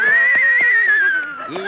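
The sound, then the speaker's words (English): A horse named Mendel, rented from a riding academy, gives a loud whinny, a shrill, quavering call that wavers and trembles for over a second before dropping slightly in pitch at the end, with no talking. “Kitzel, is this your horse?”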